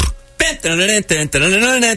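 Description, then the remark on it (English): A person imitating Peppa Pig's snort, making three loud, buzzy snorting grunts in quick succession, each with a nasal, wavering pitch. “That's a pretty good snort.”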